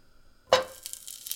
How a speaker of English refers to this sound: Oh, there's a little bit of sizzle, but not much. Yeah, I think the sizzle is just like, because it's maybe a little icy from the freezer.